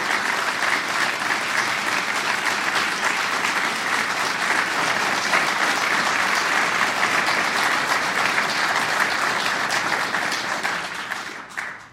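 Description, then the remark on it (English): A large audience applauds steadily for about twelve seconds to welcome Senator Arlen Specter, a dense, even wash of many hands clapping at full volume before it tapers off at the very end. “That's more applause than I can remember receiving.”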